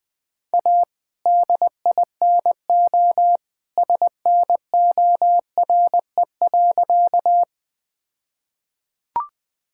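Morse code at about 20 words per minute: a steady mid-pitched tone keyed into quick dots and longer dashes for several seconds, then a pause and a brief click at the end.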